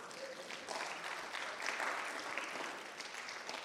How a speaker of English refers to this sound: Come on, clap hands for me.